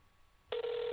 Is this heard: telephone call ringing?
yes